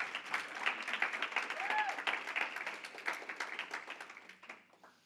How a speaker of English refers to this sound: And we honor you. Let's give a round of applause for the grandparents in the room.